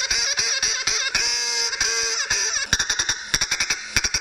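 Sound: duck quacking sound effect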